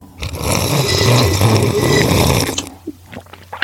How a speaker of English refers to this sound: I'm drinking an increasingly warming glass of rosé. Oh, that works. We usually do a quick, annoyingly loud slurp at the beginning of the show. Oh, okay. Yeah, I can do that. Okay, ready? I'm definitely prepared to slurp this. 1, 2, 3, slurp away.